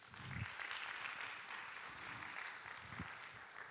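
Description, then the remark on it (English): A church audience breaks into steady applause for the Lord. Many hands clap at once in a dense wash with no voices speaking, holding an even loudness throughout. “Can you give the Lord a good round of applause?”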